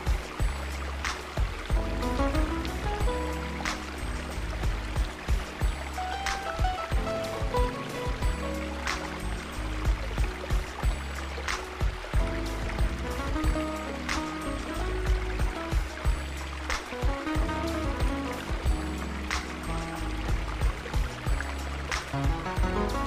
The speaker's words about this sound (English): Probably the best sounds that you could ever hear, the relaxing and soothing river flowing just down the hill from where you camp and connecting to a beautiful waterfall.